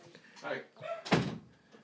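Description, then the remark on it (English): A door shuts with one solid, fairly loud thud midway through, while muffled voices talk before and after. “Yeah, we need to shut the door.”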